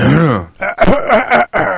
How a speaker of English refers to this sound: Clearing your throat.